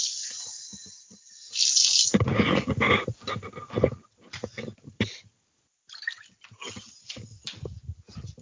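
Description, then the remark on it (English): Water pours and splashes into a cat's water bowl for a couple of seconds, followed by a few shorter splashy bursts and handling noises, with no talking. “Well, I looked over and I saw the cat didn't have any water, and she was trying to lick like the water residue off the bottom of the bowl.”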